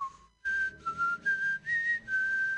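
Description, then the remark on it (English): A breathy whistled melody: a brief opening note, a pause, then several sustained notes stepping up and down in pitch, the X-Files theme song, whistled as an alien's catcall in a comedian's joke. “I was like, this fucking creep just hit me with the X-Files theme song.”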